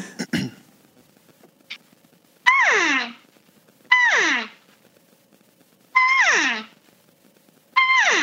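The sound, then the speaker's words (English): An elk cow call is blown four times over the phone, each a loud, nasal mew that starts high and slides down in pitch, spaced a second or two apart, after a brief rustle. “And I'm just going to blow that call, or really any cow call that I'm using.”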